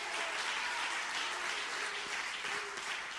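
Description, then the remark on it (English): A church audience claps together in a steady, dense wash of applause that holds at an even level for the whole stretch, with no voices standing out above the hand-clapping. “Would you clap your hands if you believe it?”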